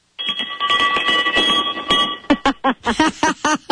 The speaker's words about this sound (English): That's our ship's bell. Every time we have good news in the company, that ship's bell rings. And anybody in the company who has the good news is allowed to ring that.